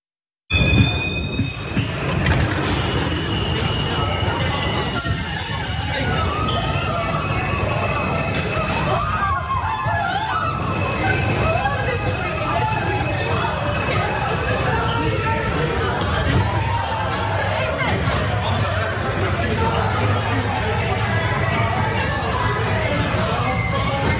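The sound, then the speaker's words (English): A subway platform scene: the steady, heavy rumble of a train fills the air while a crowd's overlapping chatter and hubbub carry on continuously throughout. “The gunman set off smoke grenades in a crowded subway, fired at least 33 shots with a 9mm handgun.”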